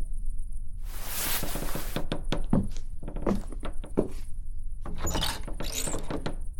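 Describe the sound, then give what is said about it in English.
A dark, empty old house creaks and groans, with a rush of noise followed by scattered wooden knocks and thunks, then drawn-out squeaky creaks, with no other sounds. “Damned house creaking.”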